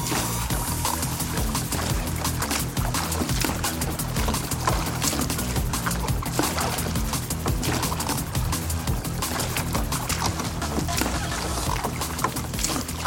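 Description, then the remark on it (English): Oars dip and pull through water in a steady, overlapping rhythm as two eight-person rowing boats, a novice crew and a varsity crew, race each other on a practice race course, with continuous splashing and churning water and no voices. “On my call, both boats start rowing.”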